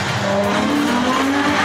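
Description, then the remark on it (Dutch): A Ferrari sports car drives hard, its loud engine roaring steadily with a droning tone that climbs in pitch as it accelerates, over a constant rush of road and wind noise. “Dit is een Ferrari, toch?”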